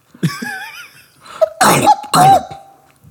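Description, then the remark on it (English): A voice imitates Gollum's cough, based on a cat hacking up a hairball: a gurgling, wavering throaty sound followed by two harsh, forceful coughs with a strained tonal rasp, fairly loud. “And so he got the cough actually from his cats that would do that would lick their lick themselves for, and they'd get fur balls and they'd cough.”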